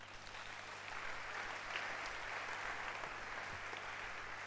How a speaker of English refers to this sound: Okay. Clap your hands for him.